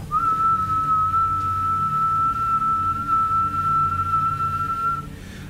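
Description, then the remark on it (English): A single sustained imitated whistle holds at one steady, fairly high pitch for about five seconds, clear and loud over a low rumbling background, then stops abruptly. “So if you took Gandalf whistling for Shadowfax at slower intervals, yeah. Different tones.”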